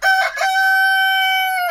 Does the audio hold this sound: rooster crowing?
yes